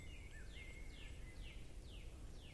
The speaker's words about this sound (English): Thought I heard a woodpecker.